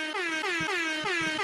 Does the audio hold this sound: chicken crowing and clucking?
no